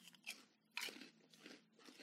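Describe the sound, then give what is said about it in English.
Loud crunching of salt and vinegar flavored vegan pork rinds being chewed, with four crisp, crackly bursts at a steady chewing rhythm and no talking. “So these are vegan pork cracklings.”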